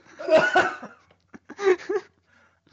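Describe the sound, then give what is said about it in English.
A person coughs heavily in two harsh, raspy bursts separated by a short pause, loud, with a few ragged breaths trailing off afterward. “coughing up some lung butter.”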